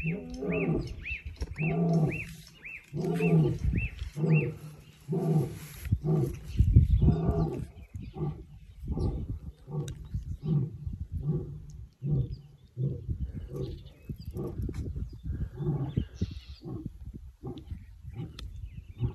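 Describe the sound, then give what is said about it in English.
A lion about 200 yards away, facing the other way, roars in a long series of deep, pulsing grunts that swell and then fade into shorter huffs, with no talking over it. “We're set up, and that thing roars. It's 200 yards away, and it roars facing the other way.”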